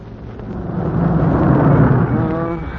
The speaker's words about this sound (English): Yeah, from the sound of the firing, the Jerry's are pounding that sector. So wherever they're pounding is wherever the war is.